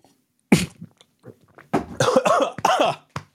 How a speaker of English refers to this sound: It's funny. The whiskey creates no reaction like that. I nearly snarfed that sip of water. It nearly wrong piped me.